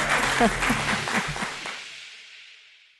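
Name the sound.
studio audience applause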